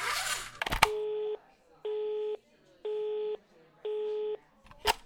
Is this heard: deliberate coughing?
no